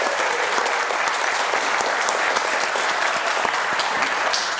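An audience applauds steadily, a dense wash of many hands clapping at a constant loud level throughout, with no break or pause and no voices rising above it.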